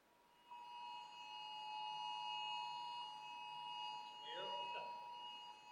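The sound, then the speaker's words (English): A cell phone emergency Blue Alert, which means a police officer has been shot, blares during a class as a loud, steady electronic tone with layered high pitches, holding unbroken for several seconds while a voice briefly speaks over it near the end. “Is that our cell phones?”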